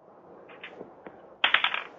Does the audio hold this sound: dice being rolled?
yes